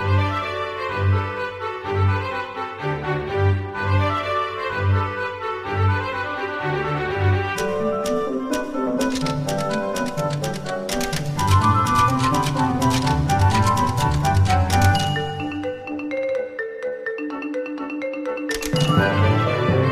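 Bouncy soundtrack music from the 3DS video game Mario and Luigi Paper Jam, with a steady bass pulse and bright, plucky melodic notes, building into a busier, percussive stretch with sharp clicks before briefly dropping out and returning.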